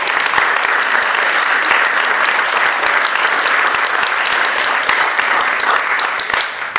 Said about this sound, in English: But before we start, can we just have one more round of applause, because they're so amazing.